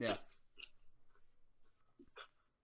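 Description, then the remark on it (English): Crunching of potato chips being chewed, with a loud first bite followed by a few softer, irregular crunches and a sharp crackle near the end. “Anyway, I keep eating these chips. This is so rude. I'm in a podcast. I'm eating chips.”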